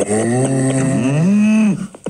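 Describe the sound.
A person's voice imitates a cow with one long, loud moo, low and droning with a slight pitch bend, ending abruptly in a couple of short breathy noises.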